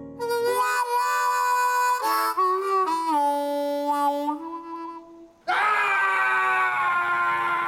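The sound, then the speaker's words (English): A man in a clip from the film The Magic of Belle Isle yells and screams loudly at life in long, strained bursts, his voice rising and falling in pitch, with a short break before one last harsh, ragged shout. “What's he yelling at?”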